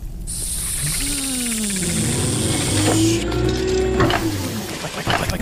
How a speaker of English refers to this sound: I'm going to light this piece of paper on fire, and I'm going to say, get out. I'm going to toss this and run. So behind you, you hear the sound of the fire, and then you hear...